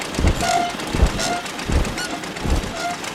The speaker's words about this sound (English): Now, in the distance, I hear an old jalopy. Oh, man. The old jalopy received wings instead of spare parts.